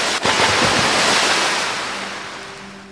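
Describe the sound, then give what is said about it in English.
Shallow waves wash and lap at a seafront in a steady, broad hiss of shallow sea water, with a few sharper splashes at the start before the surf gradually fades. No voices. “you all turn round and watch Ally, Lauren, and Brule fall out of it into the shallow sea front water”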